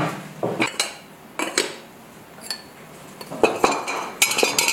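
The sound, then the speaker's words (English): Ceramic pots, mugs and vessels clink and knock together as a potter takes them out while unloading a kiln, a series of bright, irregular taps, fairly loud, with short pauses between handling sounds and no talking. “Some of my favorite videos of his are unloading the kiln, where you can hear all of the tinkly sounds of the pots and mugs and vessels as he takes them out.”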